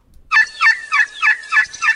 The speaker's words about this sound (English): The last one. It says turkey assembly call.